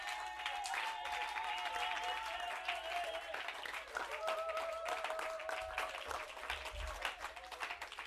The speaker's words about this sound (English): When I say stand to your feet and clap for Jesus, you're taking it for granted.